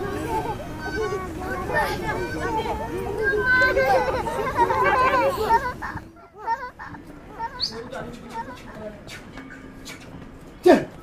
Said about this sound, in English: a rest on a bench outside a tea shop where some young children and an adult were singing something out of a school book